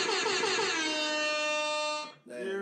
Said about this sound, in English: Where the hell is the air horn, man?